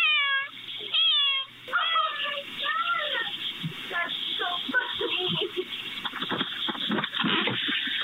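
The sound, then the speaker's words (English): An 8-year-old cat meows repeatedly at a front door after activating the doorbell camera, in loud, drawn-out, rising and falling cries. Fainter shuffling, movement and a person's voice follow in the background as the owner goes out to get her. “Here is the 8-year-old cat, Lily, activating the doorbell, meowing, and then the owner going out to get her.”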